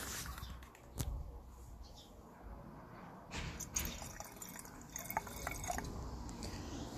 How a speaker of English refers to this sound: and I'm going to pour myself a glass of Riesling. I'm currently going to be enjoying a glass of the Paul Kluver Riesling 2018. Paul Kluver is a wine from Elgin. Let me pour myself a glass.